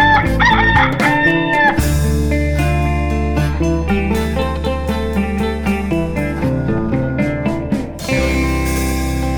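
A single loud rooster crow rings out at the start, then gives way to a bright, steady musical jingle that plays on to the end without any talking.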